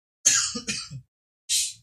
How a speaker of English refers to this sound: It's just that this crap makes me cough because of my asthma.